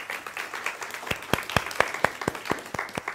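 An audience applauds, with a dense wash of clapping and several sharp, louder claps standing out in a fairly steady rhythm over about three seconds.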